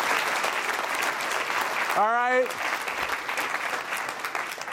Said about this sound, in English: Oh, we have applause? Okay, so thank you. Thank you.